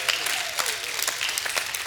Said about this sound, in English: If you believe that, give God a hand clap and a shout of praise.